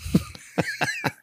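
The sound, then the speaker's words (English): A fit of sneezes from the character Sneezy, who is catching a cold: four short, explosive bursts of breath in quick succession, each sharp and breathy with a brief voiced edge, fairly loud with no talking. “I'm about to sneeze, man.”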